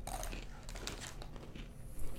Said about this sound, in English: You have a very nice chewing sound. Your mechanisms are nice.